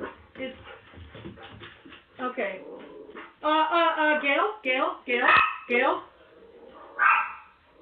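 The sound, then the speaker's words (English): Dogs bark and yelp in a rapid, excited run of high-pitched bursts at a stranger on a bed inside a house, following a stretch of muffled background voices and movement. “Hold on, I thought it was Justin that the dogs are barking at, but there is a homeless man on Taryn's bed in his room.”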